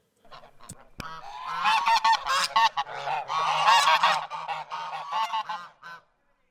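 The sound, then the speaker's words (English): A flock of geese honks continuously and loudly, overlapping calls forming a dense, raucous chorus for several seconds before stopping abruptly. “All right, that was geese. Those were geese.”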